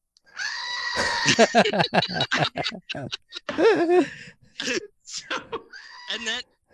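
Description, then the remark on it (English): A person lets out a loud, wavering goat-like scream, imitating a bleat with shaky vocal bursts, followed by a few shorter cries and breathy noises. “Because when it comes, I'm gonna like scream like a little girl. Like a goat.”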